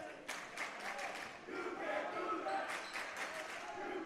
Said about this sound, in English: Hearing a little bit from the crowd, you can't do that. They are correct. You cannot do that. I see that the student section does have a ringleader. As he goes, the student section goes.